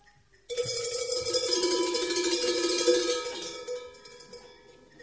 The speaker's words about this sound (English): When you hear the word joy, shake the bell for 3 seconds. Just these ones. 3 seconds.